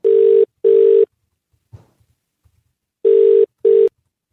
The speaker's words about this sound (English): we're going to give you two phone rings, then you're going to answer.